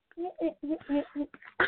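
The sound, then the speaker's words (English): A sickly young child makes a few short voiced sounds, then lets out a single sharp, rough cough right at the end, fairly loud. “Catch that cough.”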